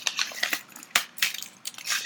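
A spiced chili chocolate bar being broken into, with a quick series of dry, crinkly crackles and a few sharper snaps, moderately loud, with no talking over it.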